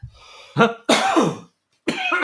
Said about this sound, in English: So, I mean, I got a bit of a cough there. Sorry about that.